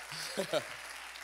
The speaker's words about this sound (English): Please clap for these guys as they're coming on stage.